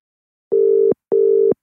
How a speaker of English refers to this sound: I love that you're telling us it's calling like you're the only one who can hear the phone.